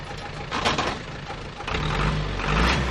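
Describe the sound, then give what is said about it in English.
A milk truck's engine rumbles closer as it arrives from a milk collection point in Bungoma County, Kenya; its low growl builds steadily and swells louder toward the end as the truck pulls in, with no one speaking. “Then a truck comes from one of 14 collection points spread across Bungoma County.”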